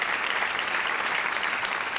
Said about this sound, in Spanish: Les aplaudimos en este día.